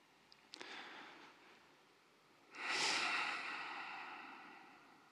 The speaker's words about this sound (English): And here, taking a few deep breaths through the mouth, I recommend big, big breaths to relax the body.